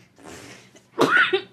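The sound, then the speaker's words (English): After a soft, breathy stretch, a sudden loud, harsh cough bursts out, rough and partly voiced, trailing off with a shorter second hack, as a person coughs after taking a hit. “Cough it up. Cough it up. Uh-uh, you take a hit. Cough it up.”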